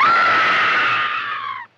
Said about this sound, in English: Perhaps if you didn't see it, you could scream. Throw your arms across your eyes and scream